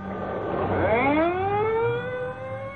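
Ambulance and police car sirens wail in a long rising sweep as the vehicles pull away from a jammed block, holding a steady high pitch over a low traffic rumble, fairly loud, with no one speaking.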